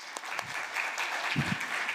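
An audience claps steadily for a speaker for a couple of seconds, a dense, even patter of many hands at moderate volume with no voices standing out.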